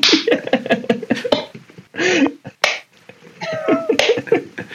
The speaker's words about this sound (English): All right, I'll clap when we land in Thailand.